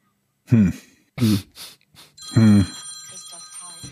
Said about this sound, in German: Telefon.